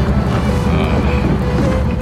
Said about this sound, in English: Kind of nice out here. Moonlight on the water, waves lapping gently against the boat.